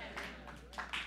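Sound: audience clapping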